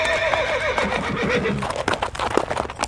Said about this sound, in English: Hear that, Enoch? I just sent my horse away